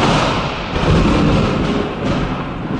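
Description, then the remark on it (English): A loud thunder sound effect rolls continuously for a few seconds, a dense booming rumble with no pauses and no voices over it. “Look on the horizon! It's a thunder god, and he's holding an invitation that he's not giving us.”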